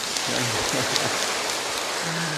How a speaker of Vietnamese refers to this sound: Cho tràng pháo tay.